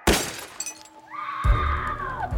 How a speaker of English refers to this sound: Kim screamed and ducked behind the car as the window shattered.